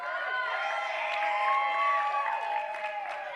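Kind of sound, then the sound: crowd, audience cheering and applauding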